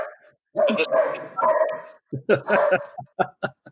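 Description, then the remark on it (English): A dog barks in a loud, drawn-out, yelping burst, then lets out a quick series of short, sharp barks that taper off. “The dog agrees with you.”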